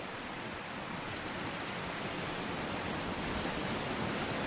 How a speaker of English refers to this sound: What river would that be? The Marne. It's in flood.